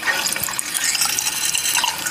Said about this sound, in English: There's a water fountain for the cats in Skylar's room.